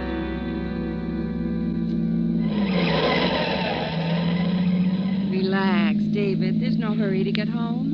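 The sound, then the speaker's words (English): A steady car engine drone rumbles throughout as a car drives in heavy traffic, swelling into a rushing noise partway through, with voices speaking over it near the end. “In this mess of traffic.”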